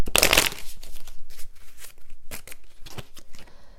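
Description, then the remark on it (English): A quick burst of tarot cards being riffled at the start, followed by softer, scattered shuffling and sliding rustles, with no voices. “They're just showing through the shuffle.”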